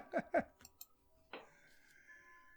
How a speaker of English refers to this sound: 10 o'clock, and all I hear is Matt's clock. So here's this clock. This clock does what it wants. It's always on the hour, but there are some days where it only plays music from like the morning until about 4 or 5 o'clock. Some days it'll skip an hour